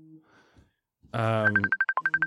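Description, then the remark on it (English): A phone rings with an incoming call: a loud buzzy electronic tone gives way to a quick series of repeated bright beeps, after a moment of near silence. “Sorry, I was getting a phone call.”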